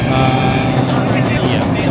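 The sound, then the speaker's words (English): A roller coaster, with a top speed of 75 mph but typically run at 40 mph, runs along seamed track, producing a loud, continuous rattling rumble like a railway click-clack, with faint clacking textures throughout, steady in volume for the whole two seconds. “Also akin to a train, the seamed track creates the same rail click-clack railway sound, particularly at the lower sections of the front.”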